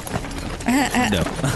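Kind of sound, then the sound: animal, horse hooves clip-clopping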